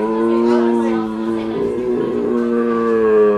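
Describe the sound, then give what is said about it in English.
A voice imitates a foghorn with a long, loud, low droning bellow. The tone holds steady for about three seconds, wavering slightly in the middle. “sounds like almost like a foghorn.”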